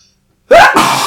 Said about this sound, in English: My sneeze.